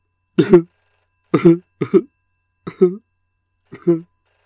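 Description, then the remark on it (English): A voice imitates a 1980s-style landline telephone ringing: five short, clear rings spaced irregularly across a few seconds, with silence in between. “Ooh, it's that cheesy sound effect of a 1980s style landline.”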